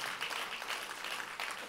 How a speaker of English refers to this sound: Seven people clap. Everybody else is like, don't like that one.